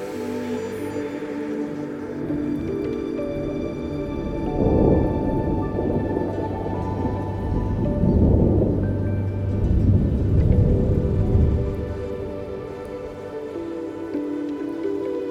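Steady rain falls throughout while deep thunder rumbles roll in twice, swelling loud and low before fading back into the constant hiss and patter of the storm.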